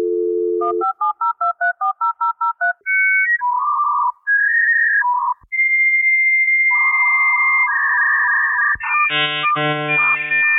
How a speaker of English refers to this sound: I tried to WhatsApp her, but it just made that dial tone noise that when you used to have to plug the phone cord into the computer.